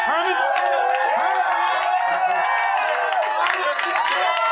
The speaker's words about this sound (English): They're cheering over nothing.